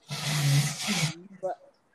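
A person blows their nose in one loud, breathy honk lasting about a second, with a low buzzy tone under the rush of air, then a short faint vocal sound.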